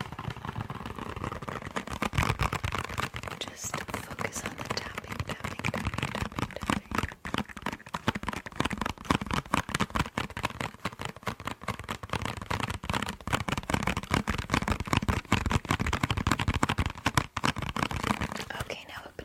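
Keyboard typing runs continuously, a dense and steady clatter of crisp key clicks with brief pauses, even throughout.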